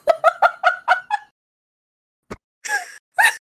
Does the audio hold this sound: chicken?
yes